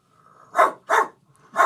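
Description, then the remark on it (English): A woman imitates a dog, letting out three loud barks in quick succession, the last one after a brief pause, with no other sounds around them. “… can bark like a fucking dog”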